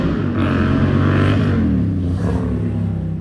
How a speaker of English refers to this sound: Noisy motorbike.